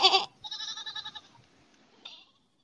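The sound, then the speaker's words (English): A goat bleats once in a wavering, nasal cry lasting about a second, bracketed by short sharp bursts of sound before and after, with no one talking. “We can make a goat noise.”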